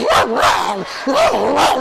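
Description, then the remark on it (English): A small puppy at a door gives a quick run of high, yappy barks, about four short yips in close succession, loud, with no other sound around them. “Little puppy came up to the door, gave a small bark, scratched the door.”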